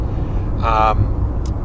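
A car going the other way, heading toward Melbourne, rushes past in a quick, brief whoosh, briefly louder over the steady low rumble of road noise from inside a moving vehicle.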